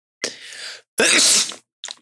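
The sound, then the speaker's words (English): A person sneezes: a breathy intake, then a loud, harsh burst of air, followed by a short sniff, with no talking around it. “But anywho, I'm going to sneeze.”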